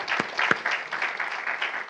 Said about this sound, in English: We also want to thank Faithway Laredo. Why doesn't everyone that's part of Faithway Laredo, why don't you stand up real quick? I'm going to embarrass you. Go ahead. Come on. Let's give them a big hand clap.